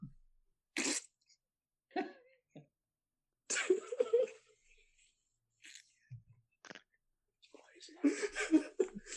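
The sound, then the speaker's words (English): A short, low, rumbling fart sound breaks in among breathy bursts and snatches of talk, with a louder burst of voices toward the end. “It's always the fart jokes, isn't it?”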